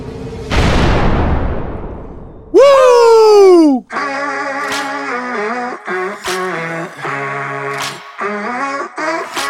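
A rocket launch sound effect: a loud, rushing roar that fades, then a bright whistling tone sliding downward, followed by synthesized music with a steady, pulsing rhythm.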